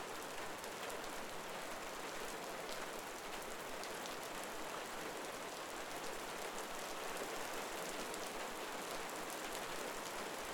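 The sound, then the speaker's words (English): Steady rain falls continuously, a dense, even hiss with soft pattering drops throughout. The sound stays constant and moderately quiet, with no voices or other noises. “As you listen to the rain, just sit in his presence, watching the rain fall.”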